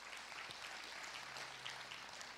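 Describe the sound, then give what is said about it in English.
Faint applause from the audience at Christian Life Center church in Dayton, Ohio, a steady, dense patter of many hands clapping at once that holds at an even, soft level for the whole couple of seconds, with no voices. “Yeah, can we give God a round of applause for that?”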